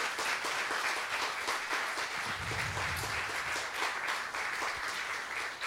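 A crowd applauds steadily, dense overlapping claps forming a continuous wash of sound at an even loudness for several seconds, with no talking over it.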